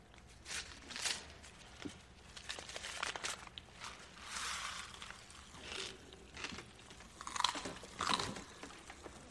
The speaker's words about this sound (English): Their teacher's giving kids Pop Rocks. Had those before? Yeah, they're Pop Rocks. They crackle in your mouth. Eat some.